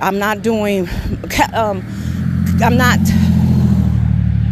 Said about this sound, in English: Sorry about this, guys. I didn't know it was going to be this much traffic